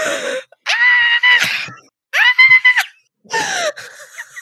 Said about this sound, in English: What? You're not listening to me scream? Rude.